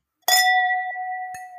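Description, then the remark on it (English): Drinking glasses clink together once in a bright toast, leaving a clear ringing tone that hangs and slowly fades, with a faint second tap just before the end. “Cheers, Doug. Cheers, hun.”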